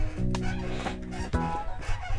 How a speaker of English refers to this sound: I got a problem. Listen to this chair. That is the loudest chair.